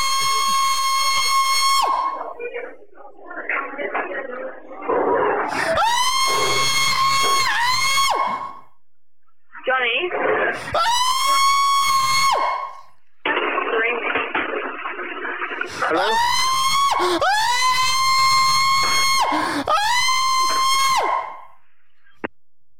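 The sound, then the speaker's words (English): A person screams loudly in a series of long, piercing, wavering shrieks, with brief pauses and strained vocal noises between them, over about twenty seconds. “someone's screaming.”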